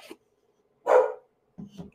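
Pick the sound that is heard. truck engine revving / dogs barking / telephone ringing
dogs barking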